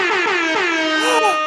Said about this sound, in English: Okay, okay, cover your ears, folks. We're getting an air horn, maybe, if this works.